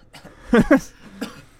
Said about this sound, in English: I've had to cough. I'm gonna be killed by drinking this ginger shot.